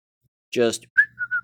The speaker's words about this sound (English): Just casually whistling the day away, just standing here. Everybody just standing around.